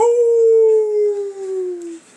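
A single long wolf howl, a clear sustained tone that slowly slides downward in pitch over about two seconds before cutting off, loud with no voices.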